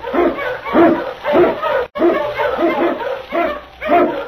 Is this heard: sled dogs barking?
yes